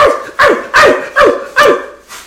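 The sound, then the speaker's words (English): A person imitates a small dog's yappy barking like a chihuahua, five or six quick, high-pitched yaps in a steady rhythm, fairly loud, with no other talking. “You sound like a chihuahua.”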